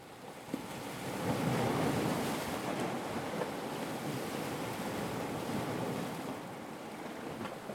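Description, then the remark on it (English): A steady wash of ocean surf rolls in and swells to a full roar before easing back slightly, with some gusty wind noise blended in. Nobody speaks. “I think the ocean is what immediately comes to mind, a kind of like a limitless, you know, depth, right?”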